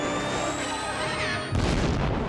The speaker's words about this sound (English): And there goes Bane, triggering the bomb.